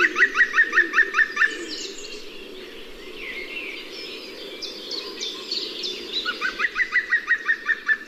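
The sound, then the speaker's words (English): A green woodpecker gives its loud, laughing yaffle call, a quick run of about ten ringing notes, then repeats it after a pause while other birds chirp and twitter in the background. “But when you hear it, it has their most distinctive call. It's like a belly laugh, and it's called the yaffle.”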